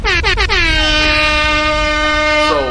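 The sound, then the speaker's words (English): A loud air horn blares in several quick stuttering blasts, then holds one long sustained, brassy tone for a couple of seconds before cutting off. “Hit him with the air horns.”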